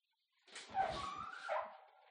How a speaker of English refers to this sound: That's the oven door opening. There we go.